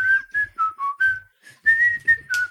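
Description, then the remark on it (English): A man whistles a short, lilting tune, clear pure notes gliding up and down in quick phrases with brief breaths between them, no talking. “He's whistling a little tune.”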